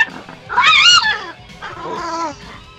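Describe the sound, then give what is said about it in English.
A one-eyed dog vocalizes in two drawn-out, high, whiny calls, the first louder and wavering in pitch, the second softer and sliding, with no one talking. “My one-eyed dog.”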